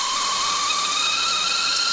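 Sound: whistling kettle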